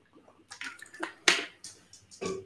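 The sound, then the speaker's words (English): Someone takes a drink of water: a handful of soft, wet gulps and lip clicks at an irregular pace, fairly quiet, with no talking. “Let me first drink water.”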